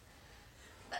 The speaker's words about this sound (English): Bless you. Thank you.